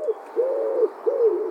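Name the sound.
pigeon cooing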